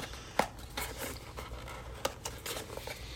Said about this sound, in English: All right, now we can close the box.